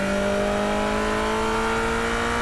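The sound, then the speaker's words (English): A European sports car engine with an even firing order revs hard at open throttle in a sustained, high-pitched wail, its tone steady and slowly rising, loud with no voices. “Combined with an even firing order, these engines whir at low RPMs, and when they really open the throttle, they make this super precise, high-pitched wah sound.”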